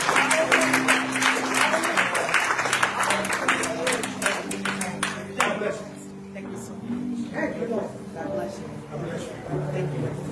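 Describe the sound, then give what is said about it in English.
An audience claps their hands for God in a dense, loud burst of applause that thins out after about six seconds, with sustained voices or tones running underneath. “Put your hands together. God, a hand clap for you.”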